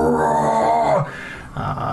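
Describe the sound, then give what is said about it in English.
A voice imitates the roar of a huge creature in a pit: a loud, sustained, growling bellow for about a second, then a lower rumbling fade and a shorter second growl. “And they get closer and closer, and you can hear whatever it is in the pit starts to move and shift and gives off this huge roar as it...”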